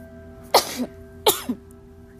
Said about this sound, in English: Ooh, excuse me. Sneezing for a reason. Spirit is here, everybody. Spirit is here.